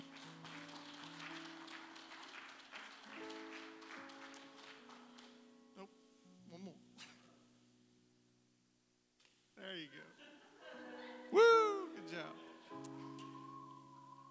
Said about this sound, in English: All right. Let's give our little helpers a hand clap.